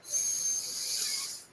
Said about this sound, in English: So everyone, I want everyone to take a deep breath in.